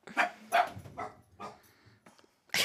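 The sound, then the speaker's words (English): A dog barks several times in short, irregular bursts, not especially loud, with brief quiet gaps between the barks and no one talking. “It's bark, bark.”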